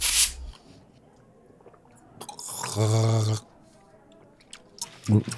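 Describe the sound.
A throaty, bubbling gargle of Burlock and Barrel sanitizer lasting under a second, voiced and buzzing, set between wet squishing and slurping noises with faint background talk.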